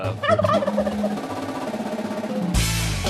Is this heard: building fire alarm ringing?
no